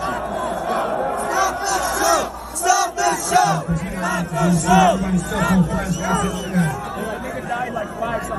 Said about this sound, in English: So here's a clip of people chanting, stop the show.